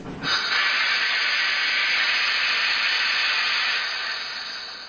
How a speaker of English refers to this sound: Do you hear that? That sound changed the world forever. After that, it was never the same again. It is the sound of progress, the steam engine.